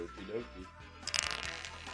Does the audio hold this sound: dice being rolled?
yes